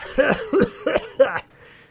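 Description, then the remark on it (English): A person imitates a woman in the second row of seats hawking a phlegmy cough: four harsh, throaty bursts in quick succession, fairly loud, then a brief fade into quiet. “So I'm like, 1, 2, 3, 4, and right when I get to five, there's a woman in the second row, right at the five in that row, and she just hawks the biggest cough, the biggest loogie.”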